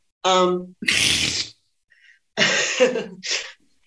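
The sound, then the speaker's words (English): Someone coughs hard on a martini: a brief voiced noise, then a few loud, raspy bursts separated by short pauses, with no talking. “That just made me cough on my martini.”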